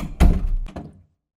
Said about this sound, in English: Good night, warden. Close that door after you. Yes, sir.